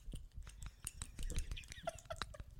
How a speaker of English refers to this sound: I am now applying my Fenty Beauty gloss. Here we have glass slipper. Listen as I open it.